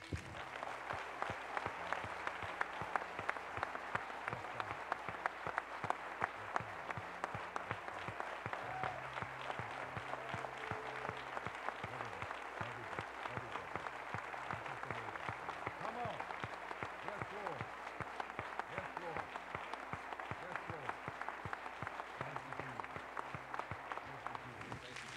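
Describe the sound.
A church audience claps hands forcefully and steadily for about twenty-five seconds during a morning service, a dense, loud wash of applause with a faint low hum and murmuring voices beneath it.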